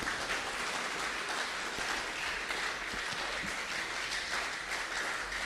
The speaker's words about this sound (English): Shall we give Jesus a wonderful round of applause?